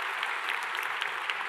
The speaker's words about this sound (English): If you're here this morning, yeah, clap your hands, man. It's awesome.